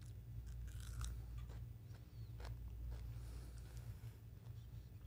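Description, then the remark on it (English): Someone bites into a slice of pepper and chews it, making a handful of crisp, irregular crunches over a low, steady background hum. No one speaks. “This is a pepper. Okay, now try.”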